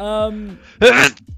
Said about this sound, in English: Oh, God, I think that might be the first sneeze recorded.